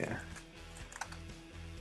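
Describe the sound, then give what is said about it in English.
Quiet typing on a computer keyboard, a scattered run of soft key clicks at an uneven pace over a steady low background hum, with no voices. “We'll fix all this typing in post.”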